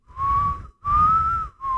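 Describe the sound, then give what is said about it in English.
A person whistles a short tune imitating the entrance whistle of a cartoon villain, three sustained, slightly wavering notes separated by brief breaths, clear and fairly loud with no talking. “But every time he entered, he did that whistle and then puts his...”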